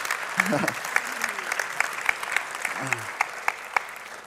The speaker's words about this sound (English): Give the Lord a hand clap of praise tonight, man.